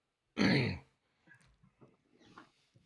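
A single loud, harsh throat-clearing cough bursts out, followed by quiet, indistinct murmuring speech in the background.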